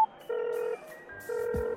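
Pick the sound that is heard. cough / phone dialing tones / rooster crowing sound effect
phone dialing tones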